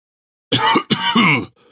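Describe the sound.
A man coughs or clears his throat in two rough, raspy bursts, one right after the other, fairly loud with no talking around them.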